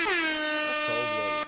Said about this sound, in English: Shout out to Al Green. Hit Al Green with air horns.